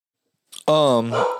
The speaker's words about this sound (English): I did some research, and you hear my dog barking in the background.